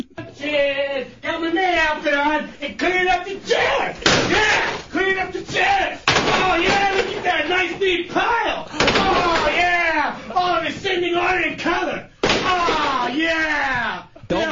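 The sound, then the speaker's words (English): Chairs being picked up and cleared away, with several loud knocks and clunks at irregular intervals, while voices talk continuously over the clatter. “Let me go clean up the chairs. This is me cleaning up the chairs.”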